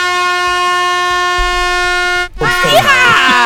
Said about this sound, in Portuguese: Dele buzina!